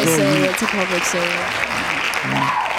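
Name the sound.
hand clapping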